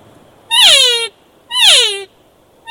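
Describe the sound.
Two mewing cow elk calls imitating a herd's matriarch, made on a hunting call, each about half a second long, nasal and raspy, sliding from a higher pitch down to a lower one, separated by a brief pause.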